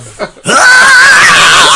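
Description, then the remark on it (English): A loud, piercing scream bursts in after a brief murmur and holds steady, shrill, for over a second without letting up. “there's a whole lot of screaming.”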